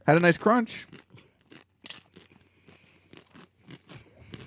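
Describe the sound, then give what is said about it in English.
A crunchy bite into a taco holding hamburger meat, with a crunchy top part, followed by a run of irregular crisp crackling crunches as it is chewed, with a brief voiced sound at the start. “Now, the top part's crunchy.”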